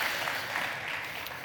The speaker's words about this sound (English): So please, huge round of applause.